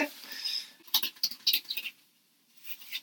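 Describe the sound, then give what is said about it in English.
A deck of fish tank cards being shuffled to draw a card for a weekly reading: a soft papery riffle followed by a quick run of crisp, irregular flicks and taps, then a fainter rustle as the deck settles. No one speaks. “Okay, I'm shuffling.”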